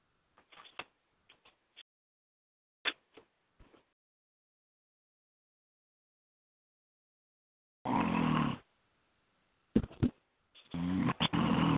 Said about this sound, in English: He's snoring. And I hear somebody. I hear somebody there that fell asleep. I'm not snoring. It must be someone else. Maybe it's my mother.